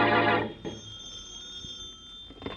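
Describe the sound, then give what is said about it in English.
An old-fashioned telephone bell rings once in a home in a loud, brief clattering burst, then leaves a thin metallic tone hanging faintly in the air; no one speaks. “And in the Bromley home, the phone rings.”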